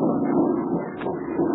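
A steady, low droning hum of an airplane engine, heard from a riverboat on a Chinese river with the plane unseen in a starry sky, holding at an even level throughout, a continuous rumble with no voices and no breaks.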